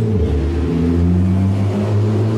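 The engine of a car with a very large rear spoiler roars, its deep, droning hum shifting slightly in pitch as it revs and goes past, loud and steady, with no voices.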